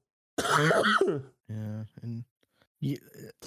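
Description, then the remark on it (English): Several rough coughs and throat-clearing bursts from a person with a lingering COVID cough, the first long and harsh, followed by shorter voiced hacks separated by brief pauses, with no talking. “I got COVID, and I'm stuck with the COVID cough.”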